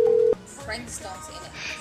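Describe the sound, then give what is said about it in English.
A telephone tone sounds loud and steady for about a third of a second as someone calls a phone number, then cuts off abruptly with a click, leaving quieter background voices and noise. “I'm gonna keep calling and asking how much things are.”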